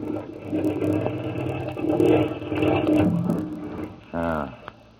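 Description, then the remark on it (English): A boat's marine engine runs with a steady, rough low rumble and clattering texture, surging slightly in loudness before a short, tonal rev-like rise near the end, as the engine is sped up. Its fuel line is thought to be blocked. “Know anything about marine engines?”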